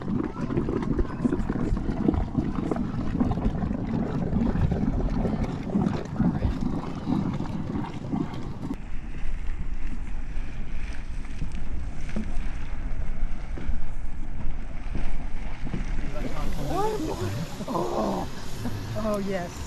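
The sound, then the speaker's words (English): Steady rushing cold water churns past a moving boat, with wind buffeting the microphone throughout; the wash shifts midway, and faint voices surface near the end. “Yeah, except that water there, that's cold.”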